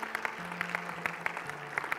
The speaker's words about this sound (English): Give the Lord a hand clap for his word today.